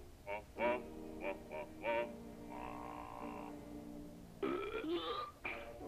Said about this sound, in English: He burped out of corn.